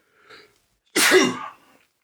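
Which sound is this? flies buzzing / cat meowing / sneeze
sneeze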